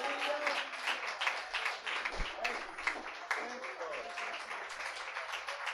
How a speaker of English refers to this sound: I can't sit still. I can't be quiet. I gotta clap. I gotta wave. I gotta jump. I gotta praise God.